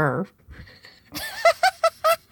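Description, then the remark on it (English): A person vocally imitates the squeaking of their joints as a series of high, squeaky whines, about five short bursts in quick succession, sounding like a small dog whimpering, loud, after a brief spoken lead-in. “Mine you are more squeaks. They're like...”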